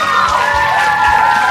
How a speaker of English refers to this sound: Yes. I'm going to pave the way for our dear friends to come straight down here and we'll cheer and clap and screaming. So, ladies and folks, will you please give a great big round of applause to our first guy,